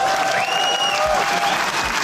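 A burst of applause: dense, continuous clapping from a group that holds steady and fairly loud for about two seconds, with a thin sustained tone faintly audible above it.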